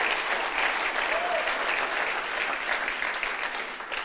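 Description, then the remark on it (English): An audience claps for Jesus steadily for about four seconds, a dense, even wash of many hands with no individual beats standing out, loud and sustained throughout. “So let's clap, everybody. Let's clap.”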